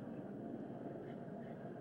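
An airplane passes overhead, a steady, low rumbling roar that fills the background with a constant broad drone throughout, no voices heard.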